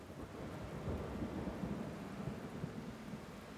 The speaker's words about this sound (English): It is obviously raining outside.